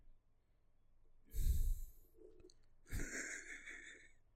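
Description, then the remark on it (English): A person breathes heavily into a microphone: a loud rushing exhale followed a second later by another long, airy breath, with no talking. “I'm a heavy breather, so if I breathe into the mic, I apologize.”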